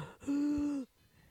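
A single deep, audible breath, close and fairly loud, drawn out for about half a second with a hoarse, wheezy tone before cutting off into quiet.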